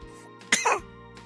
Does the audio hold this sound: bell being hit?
no